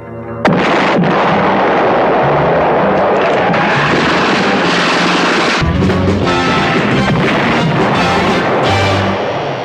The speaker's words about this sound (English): The explosion will raise a cloud of radioactive dust that will settle over vast areas of the Southwest.